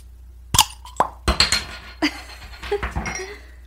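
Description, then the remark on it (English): A tiny champagne bottle is opened: a soft pop, then a few sharp clinks and a light fizzing hiss, with no one speaking. “We don't have a bottle to pop, but this should suffice.”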